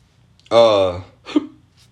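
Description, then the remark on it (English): A loud, close-up burp rumbles for about half a second, deep and croaky, followed shortly by a brief, softer breathy sound. No one speaks. “Only reason I'm in a good mood is because I'm burping and shit.”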